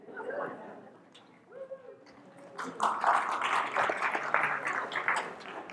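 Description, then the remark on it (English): A short stretch of voices gives way to an audience bursting into sustained applause, dense and moderately loud, with some cheering mixed into the clapping for several seconds. The audience is applauding someone for bringing the speaker a glass of water. “You get a glass of water, you get a round of applause.”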